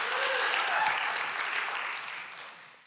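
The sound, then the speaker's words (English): An audience claps and cheers together, a dense wash of applause with a few whoops rising through it, loud at first and then gradually tapering off. “Come on, you can clap, you can shout, you can hoot and holler.”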